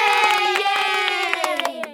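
round of applause

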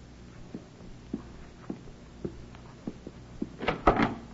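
door being opened

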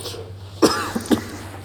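coughing

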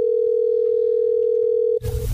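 telephone dial tone

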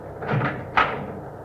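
car door opening

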